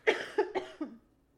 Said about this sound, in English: Oh my god. This cough will never go away